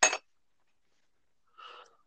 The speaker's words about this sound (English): You guys know the Ruffs bought a bunch of bells, right? They're bringing a Mojo Town. But she made a bunch of necklace bells too, but I think she made a special one just for you.